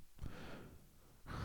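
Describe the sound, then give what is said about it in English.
Heavy breathing through the nose, with a sharp intake near the start and another strong rush of air at the end, soft airy hiss between them and no talking. “I feel like I'm breathing heavy. I feel like I'm breathing through my nose.”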